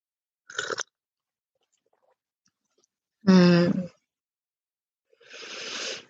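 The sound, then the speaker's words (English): Sips of tea from a cup: a brief slurp, a short voiced sigh a few seconds later, then a longer, airy slurping sip, with quiet gaps between. “When you're ready, let's go ahead and prepare to take a sip of our tea.”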